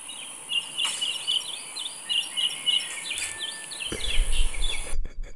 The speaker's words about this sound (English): Literally, it was like birds just like mad chirping, just like the wind flowing, like life is great over here.